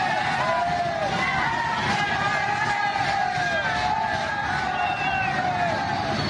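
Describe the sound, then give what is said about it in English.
A large crowd of people riding freight trains toward the United States border cheers continuously in a dense, steady roar, with many overlapping voices and rising and falling whoops and calls over a noisy background. “is that them cheering or are they being booed at? It sounds like they're cheering.”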